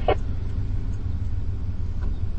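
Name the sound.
car interior rumble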